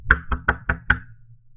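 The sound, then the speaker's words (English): Five quick, firm knocks on a wooden door in an even rhythm, fairly loud, in the middle of the night, followed by a low hum as the knocking stops. “Dad, open the door.”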